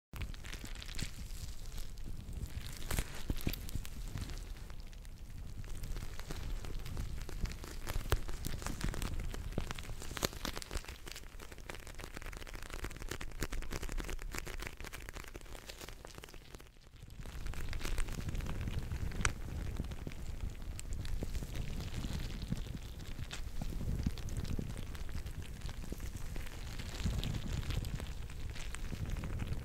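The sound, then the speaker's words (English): A gel eye mask filled with green bubbles is squeezed and rubbed, making a steady stream of soft crackling, squishy sounds like light rain, with a brief lull partway through and no talking. “It's actually this strange eye mask with green bubbles in them.”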